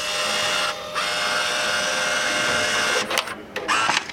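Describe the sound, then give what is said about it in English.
A story dispenser prints a graphic story with a steady high-pitched mechanical whir lasting a few seconds, briefly dipping once, then ending in a few quick stuttering clicks as the ticket feeds out. “This dispenser is going to actually print me off something.”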